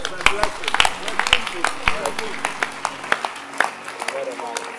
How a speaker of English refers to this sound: Clap your hands for this book.